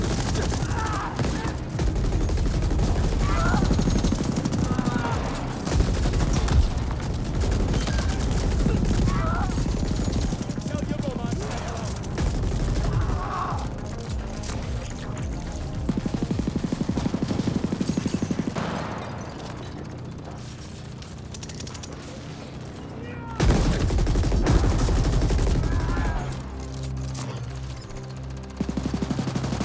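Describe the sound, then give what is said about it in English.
Loud, dense video game gunfire rattles almost nonstop in rapid automatic bursts, with heavy booming impacts and a brief lull before another sharp volley; faint voices murmur underneath. “Sound of gunfire. Guns sound good. Audio of the game's great.”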